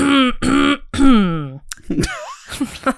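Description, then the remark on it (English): Someone clears their throat several times in close succession, loud, with harmonic vocal rasps stretching into a drawn-out, croaky final effort. “It started for a bit of dramatic effect and then I actually needed to clear my throat.”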